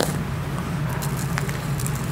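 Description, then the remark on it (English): Salt sprinkled onto seeded watermelon: faint, scattered little ticks and patters in a few brief bursts, heard over a steady low hum with no talking. “Sprinkling salt on my watermelon.”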